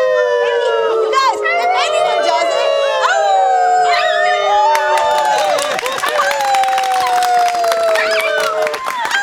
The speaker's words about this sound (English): does he just howl? He howls.